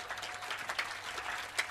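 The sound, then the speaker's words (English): A church audience in an auditorium claps together to clear out a demon, a steady, dense patter of many hands, fairly soft and even throughout, with a couple of slightly sharper claps standing out and no voices. “Clapping as if it is only about 200 people that are here.”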